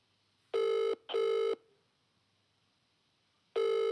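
A phone ringback tone heard from the caller's end: a double burst of buzzy ringing, a pause of about two seconds, then the next ring starts. Nobody picks up and no one speaks.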